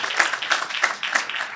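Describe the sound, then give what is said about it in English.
A crowd applauds standing couples married 20 years or less, many hands clapping in a dense, bright wash with a few sharper claps standing out at a fairly even rhythm, moderately loud throughout. “Give them an applause. They deserve it.”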